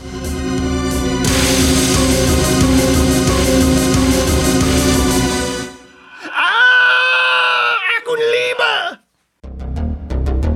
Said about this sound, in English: We cut, mercifully, to the hallway just outside of Meredith Indigo's office door, just in time to hear Professor Z's final ghostly screams.